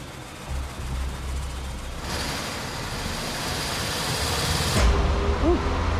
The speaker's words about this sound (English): So I've got somebody in the car, and they can rev the engine up to a couple thousand RPMs, would be about cruising speed, say. Right. Let's see what happens. Yeah. Yeah. Okay. Can you bring the RPMs up to about 2,000, please?